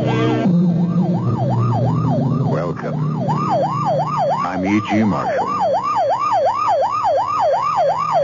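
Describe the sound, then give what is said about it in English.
A wailing emergency siren of a police car or ambulance on the way to or from an emergency rises and falls in rapid repeating sweeps, loud, with a low vehicle rumble underneath and a brief burst of other noise partway through. “You know it's a police car or ambulance on the way to or from an emergency in which someone is badly hurt.”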